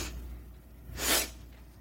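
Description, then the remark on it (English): One sharp, breathy sniff, a quick inhale through the nose that stands out against a quiet background hum, with no talking. “A lot of sniffing tonight.”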